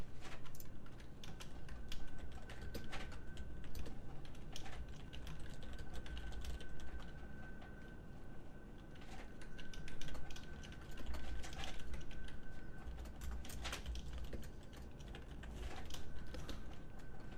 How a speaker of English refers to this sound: This is a lot of typing. Yeah, I thought probably you were typing out a single movie title.